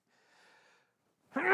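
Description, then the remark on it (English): After more than a second of silence, a sudden breathy sneeze bursts out, harsh and rising in loudness until it cuts off abruptly. “I'm going to sneeze.”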